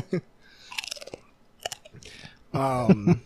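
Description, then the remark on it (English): Close, loud crunching of Pringles potato chips eaten right into the microphone, a few sharp crackly bites and chews spread over a couple of seconds, followed by a voice. “We should eat Pringles right into these microphones.”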